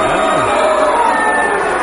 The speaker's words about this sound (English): The crowd's angry.